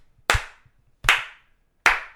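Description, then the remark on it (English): Three loud, sharp hand claps spaced evenly and slowly apart, each with a bright smack and brief decay, and quiet gaps between them, with no voices. “Slow clap required across the board.”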